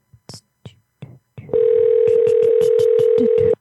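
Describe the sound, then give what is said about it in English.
A few short clicks and taps, then a steady, loud phone-line tone drones on continuously, like an outgoing call to a Rite Aid store ringing on the other end with no one picking up. “Of course, after 4 months of being off, the first number doesn't pick up.”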